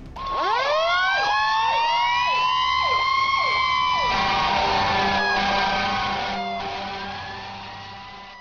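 A fire engine siren winds up in a rising wail of rapid upward sweeps, then settles into a loud, steady blaring tone that gradually fades. No one speaks.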